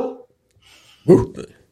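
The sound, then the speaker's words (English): An old dog gives a short, sharp bark, followed by a quieter second yelp. The sounds are loud after a brief moment of quiet, with a snippet of voice at the very start. “So does the dog. We both, the dog and I, agree.”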